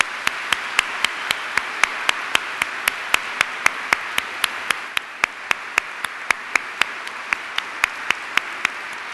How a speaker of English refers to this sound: It gives me great pleasure to welcome His Excellency Ban Ki-moon on behalf of all students at the University of Sydney. A round of applause for the United Nations Secretary General, please.